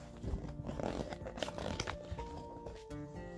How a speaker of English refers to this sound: The only sound I heard was the crunch, crunch, crunch of snow onto my boots.